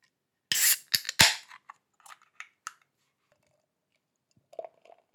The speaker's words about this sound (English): Now it's time for me to open a can.